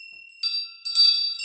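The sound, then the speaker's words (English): A small bell rings out with bright, high metallic tones, struck two or three times in quick succession so each ring overlaps the lingering shimmer of the last. Fairly clear, with no voices. “The bells. This bell was a gift from one of our listeners.”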